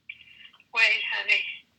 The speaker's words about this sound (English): Wait, the other phone's ringing.